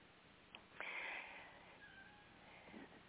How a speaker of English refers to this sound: So I have a kitty that's restless because he wants to be outside, but it's raining, so just give me a second, please.